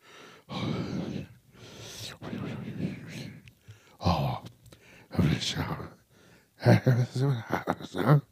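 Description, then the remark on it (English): Heavy breathing into a microphone: a series of loud, rasping inhales and exhales, some with voiced sighing or gasping, separated by short pauses, with the last few breaths harsher and more strained. “And then I'm also working on, just breathing techniques because you don't want to be like this the whole time.”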